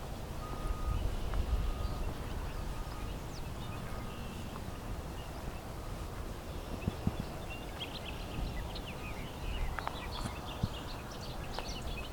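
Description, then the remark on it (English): A bobolink sings a bubbly, jumbled run of metallic notes in the second half, partly buried under steady outdoor wind and field noise. “Comes another bobolink.”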